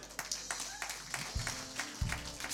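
Scattered, uneven clapping from a few people, sharp hand claps popping at irregular intervals, with a couple of dull low thumps mixed in and a faint murmur underneath.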